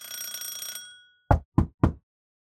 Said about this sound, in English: Their hand twitches towards an intercom panel, and then they just press a little bell button on it and just scurry away.